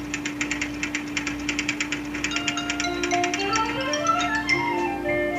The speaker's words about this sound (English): Did you see that? The machine typed everything I... It's typing everything I'm saying!